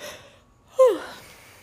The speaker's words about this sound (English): I feel like, you know how yawning is like when your body doesn't have enough oxygen, so it yawns and it's like a big breath? Isn't that what yawning is?